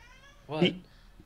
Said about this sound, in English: I don't know if you can hear my cat.